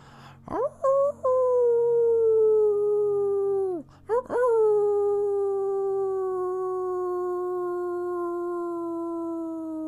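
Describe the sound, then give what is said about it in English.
Wolves howl in the distance in long, sliding wails: a rising cry that fades after a few seconds, then a second that swoops up and holds steady to the end, over a soft low drone. “And off in the distance, as you continue to howl, you can hear even more howls off in the distance, far away from other wolves across the land.”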